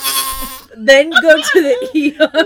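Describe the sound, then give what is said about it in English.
A fart whistle toy, a whoopee cushion that is blown into, lets out a single loud, buzzy, bleating blast that lasts under a second, followed right away by a person speaking. “this is essentially my review for the fart whistle. It is... a whoopee cushion that you blow into, basically.”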